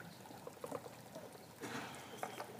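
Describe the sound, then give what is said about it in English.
A cap is twisted off a plastic water container for a baptism, with a few dry ratcheting clicks and a brief scraping rush, quiet, with no one speaking. “All right, let's bring the water. And who's going to be baptized first? Take the top off.”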